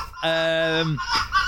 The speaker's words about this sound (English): It's rutting foxes. That's my house. That's what it sounds like. That's my house.